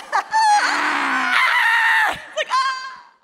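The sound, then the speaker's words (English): A person screams loudly while running, one long sustained shriek with a wavering pitch, followed after a brief gap by a second, shorter scream. “run scream to be my ringtone.”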